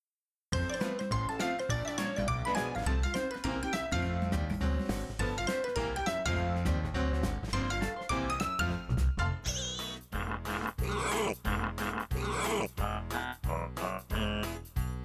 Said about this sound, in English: You know you're smiling, right? When you hear pigs singing Christmas carols, you know you're happy.